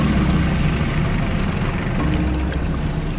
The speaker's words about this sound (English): Starting up the engine to my boat, I started to drive it towards the middle of the lake.